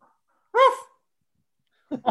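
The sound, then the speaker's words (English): A single loud bark, a person's voice on a Zoom call mimicking the dog Carver, cuts through the quiet, followed by a brief pause before someone starts speaking. “I mean, the fact that people can't see the Zoom and they might believe that that was actually Carver barking is kind of awesome.”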